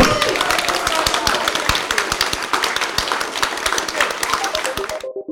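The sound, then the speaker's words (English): A crowd at the Margate Bookie applauds a panel of writers steadily for about five seconds, a dense patter of many hands clapping at a fairly loud, even level before cutting off abruptly. “Can we have the most enormous round thank of applause so for”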